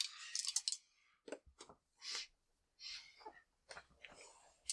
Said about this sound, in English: I like these dice. What did you roll? That's a one. Again. It's a one.